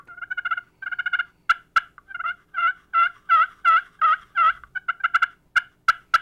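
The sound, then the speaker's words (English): Soft, sweet yelps from a rectangular slate turkey call, about 4 inches long and 2.5 inches wide with a sound chamber and a 1/2 by 4 inch piece of slate, played in short rhythmic runs of clucky notes with a few sharp clicks, clear with no talking. “And it's got about a 1/2 inch by 4 inch piece of slate, and it's just a really soft, sweet calling.”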